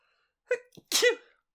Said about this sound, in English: Sorry, I sneeze every time somebody talks about Star Trek Picard.